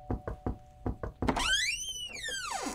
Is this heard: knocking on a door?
yes